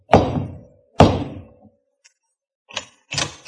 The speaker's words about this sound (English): As I pulled up at the front door, I looked for the bell, but there was none. Nothing but a huge knocker looking like it weighed about 10 tons. I whacked it a couple of times and thought the house would fall off its foundations.